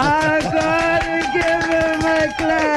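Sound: hand clapping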